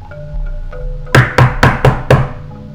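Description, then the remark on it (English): Five firm, evenly spaced knocks on a closed door ring out in quick succession, each a solid, resonant thud, preceded by a quiet stretch with a faint low hum. “And I'm stood next to you having just knocked on the door and I look over.”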